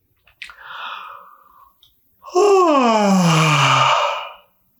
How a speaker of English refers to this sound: I'm going to do a little bit of a different type of breathing, but go ahead and do a big fake yawn with me.